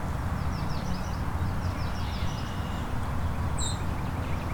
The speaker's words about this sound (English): White-throated sparrow right above me. Pretty annoyed.